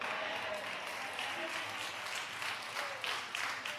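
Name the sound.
audience clapping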